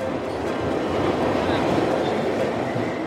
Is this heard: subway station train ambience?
yes